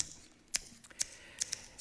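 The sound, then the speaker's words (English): Crisp metallic snips of scissors cutting hair, a handful of quick clicks spaced unevenly over a quiet background with no talking. “Now, why don't I just use the scissors?”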